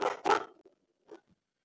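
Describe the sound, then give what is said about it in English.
Two sharp, loud dog barks in quick succession, followed after a brief pause by a couple of faint, short whimpering sounds. No one speaks. “rambling with his dog.”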